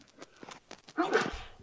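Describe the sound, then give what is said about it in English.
A single loud, sharp sneeze bursts out after a moment of quiet shuffling, a short breathy explosion that quickly fades. “Bless you.”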